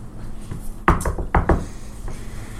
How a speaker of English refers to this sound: You knock on the door.